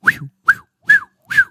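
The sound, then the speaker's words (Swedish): A person whistles four short, breathy notes, evenly spaced, imitating a blackbird's song, with no talking in between. “Så här, jag bara, en koltrast.”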